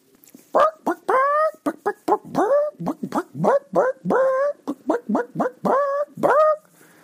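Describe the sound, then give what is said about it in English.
A person imitates a dog, letting out a rapid, steady string of about fifteen short, loud barking yelps over several seconds, with no other sounds. “You were expecting me to go, hey, but I went, bark, bark, bark.”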